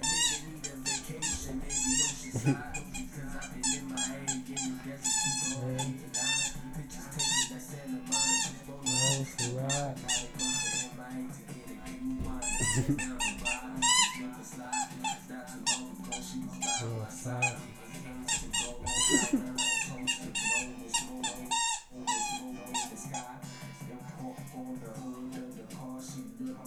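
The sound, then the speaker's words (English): A squeaky dog toy squeaks again and again in quick, irregular bursts, loud, over a steady low background hum for the whole stretch, while someone plays fetch with a dog. “A little bit of squeaking, too, if y'all hear that. I'm over here playing fetch with my dog. I got a little squeaking toy.”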